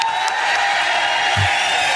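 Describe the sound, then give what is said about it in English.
A large audience applauds steadily, a dense wash of clapping with cheers and whoops mixed in, sustained and fairly loud throughout, a round of applause for a radio show's board operator. “I think we could do a better round of applause”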